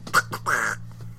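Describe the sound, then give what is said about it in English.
A person imitates a cartoon duck with a short burst of raspy, sputtering quacks, fairly loud, lasting about a second over a faint steady hum. “He sounds that's like fun. Daffy Duck.”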